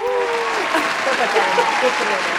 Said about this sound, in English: round of applause. Yay!